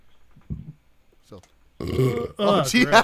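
A loud, close burp rolls out in two long, raspy bursts after a few moments of faint shuffling and quiet mouth noises.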